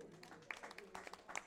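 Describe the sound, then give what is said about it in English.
Scattered, half-hearted clapping from a church audience after an announcement of a 10-hour prayer on December 3: a thin patter of irregular claps, fairly soft, with no steady rhythm and a faint murmur underneath. “That clap is not from your heart.”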